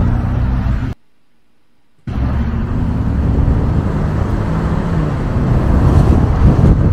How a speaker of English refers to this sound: So this is the Hurricane motor that's in supposedly a truck, a TRX, a big fucking truck, and it accelerated really well. It made me go, huh? That's interesting.